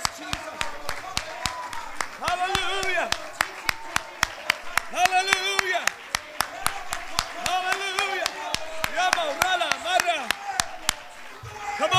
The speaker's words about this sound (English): If you're here and you believe God's going to do something, if you believe that God's going to do the miraculous, I wish that you would clap your hands and shout unto God with the voice of triumph.